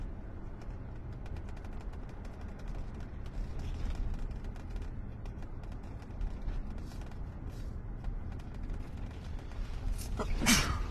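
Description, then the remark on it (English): A police sergeant sneezes once near the end, sharp and fairly loud, over a steady low rumble of a car engine and road noise inside a moving vehicle approaching the intersection of Park Avenue and Reservoir Avenue on St. Patrick's Day night. “Bless you,”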